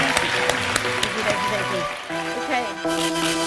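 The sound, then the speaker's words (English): An audience applauds with dense, steady clapping that fills the whole clip at moderate loudness, while several people talk over the applause. “So a round thank of applause, you.”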